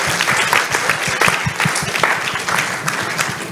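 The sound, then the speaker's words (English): An audience applauds a questioner, a top lawyer, a dense patter of many hands clapping at a fairly loud, even level throughout, with no voices rising above it. “But let's clap for him for such an excellent.”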